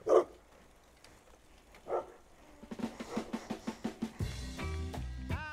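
A dog barks twice with pauses between, then lets out a quick run of repeated barks before breaking into higher, drawn-out yelps and whines near the end.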